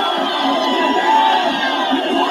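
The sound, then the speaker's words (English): A large crowd of lockdown protesters in Sydney, breaking through barriers and clashing with police, roars continuously, many voices shouting and cheering over one another in a dense, loud wash of noise with no pauses, steady at full volume throughout. “At least 57 people were arrested after crowds broke through barriers and clashed with police.”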